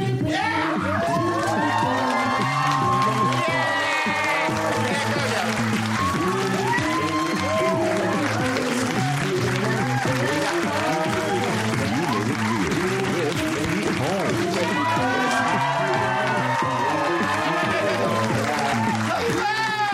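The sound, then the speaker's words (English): A studio audience applauds and cheers on cue for a show's intro, dense clapping with whoops and high shouts rising over it, loud and sustained the whole time with no single voice standing out. “So they'll play the intro, and then clap, and then I'll come up, and we'll start.”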